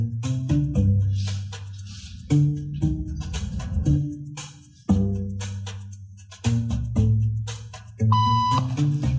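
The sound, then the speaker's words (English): An electronic beep tone sounds about five times at uneven intervals, each sharp onset followed by a sustained, fairly loud electronic hum that lingers before the next beep. The tone is a signal to stand up in a social conformity experiment. “Beep means stand up.”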